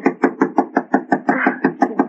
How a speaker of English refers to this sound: Knock harder, Alice. Knock harder.